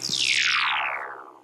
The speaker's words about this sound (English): I had forgotten about the massive amounts of stun in season one when in watching season two, and I love that stun sound so much. And it's just heaven hearing it over and over and over again.